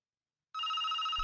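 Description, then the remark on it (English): A telephone bell starts ringing abruptly after a short silence, a steady, bright, buzzing trill with strong harmonic tones, joined near the end by a low rumble. “Oh, bet that's the office.”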